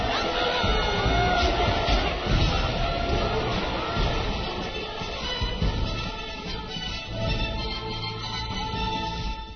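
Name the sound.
crowd cheering and shouting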